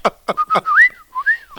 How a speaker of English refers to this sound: You sound like a drunk parakeet. What? You're not even whistling. You're just blowing air out of your mouth hole. Can't whistle.